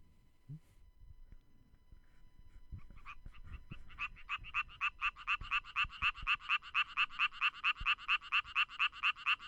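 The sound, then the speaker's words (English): The mating call of a frog infected with BD, a pathogenic fungus: a fast, steady train of loud, buzzy pulses that starts softly, then grows stronger and repeats rhythmically, with no talking. “Then they study the mating calls of frogs with BD, the pathogenic fungus.”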